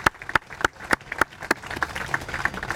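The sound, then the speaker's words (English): An audience applauds to thank a Human Resource team, with one loud clapper striking a steady beat over a softer, scattered spread of clapping from the crowd. “They're all in there serving food, but let's give them a huge round of applause.”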